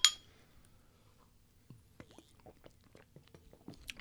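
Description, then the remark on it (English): A single bright clink of glasses of light beer touching in a toast rings out at the very start, followed by quieter scattered clicks and soft mouth sounds, with no one talking. “So, you know, cheers. Let's give cheers.”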